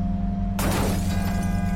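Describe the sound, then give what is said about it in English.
A loud crash in a city erupts after a low steady hum, bursting into crumpling metal and shattering glass that keeps rattling and clattering until the sound cuts off. “And then a crash shatters the silence, followed immediately by the shriek of crumpling metal, the tinkle of shattered glass.”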